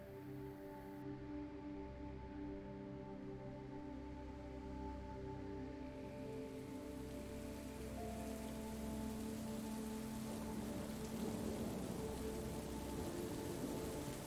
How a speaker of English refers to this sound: Beyond the circle of armchairs, a large window offers a breathtaking view of the storm outside. Raindrops splatter against the glass, and the trees sway in the wind, their leaves rustling in a symphony of nature's music.